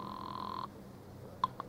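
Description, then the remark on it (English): A single steady telephone ring tone sounds for a moment as a call is placed to the home office, then cuts off, followed by quiet and two brief sharp clicks, as if the line is picked up. “Phone call to the home office.”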